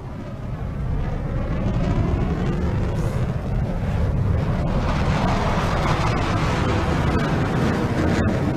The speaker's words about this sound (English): It looks like the Israeli Air Force never sleeps. Those are not our planes. Not from that direction. Let's take cover.